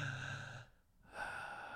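A slow, deep breath drawn in through the nose, a brief pause, then a long breathy exhale. Fairly quiet, with no talking.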